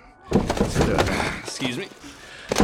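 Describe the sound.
Several heavy, irregular thumps and bumps against a door frame as a person wearing a bulky real water heater costume is stuck in a doorway, with muffled voices underneath and a final louder bang near the end.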